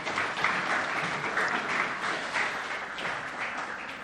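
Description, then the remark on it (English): A church audience applauds its mothers steadily for about four seconds, a dense wash of many hands clapping at a fairly even, moderately loud level with no voices standing out. “Yeah, we can give our moms a round of applause, please.”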